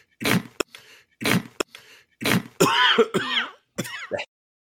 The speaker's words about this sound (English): now I think we've got the … cough sound effect that we will cut you off with